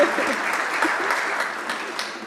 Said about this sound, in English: And if you are here in this room with us today and you feel comfortable raising your hand, we would love to welcome you with applause. And we would love to applause anyway for all those folks online.